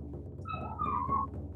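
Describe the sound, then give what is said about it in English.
A female puppy whines to be let inside, one drawn-out, high, wavering cry that rises and falls for about a second, over a low steady background hum with no talking. “I'm sorry, I have a puppy and she's crying to come in.”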